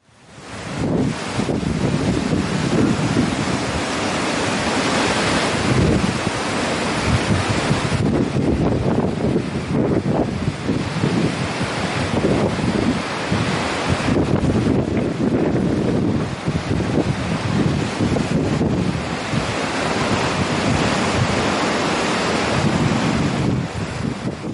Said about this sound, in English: showing the wind on the Sea of Galilee, so you can just see for yourself